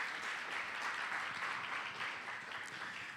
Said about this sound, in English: Can we give them a round of applause for doing that?